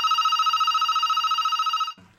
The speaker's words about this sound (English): Okay, what? Yeah, that's the landline ringing.